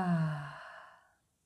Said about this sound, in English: Exhale out for 5, 4, 3, 2, 1. Last one, inhale. Exhale out.